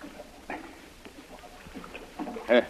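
Quiet water sounds of a canoe being paddled, with a few soft, irregular splashes and drips, ending with a brief voiced sound.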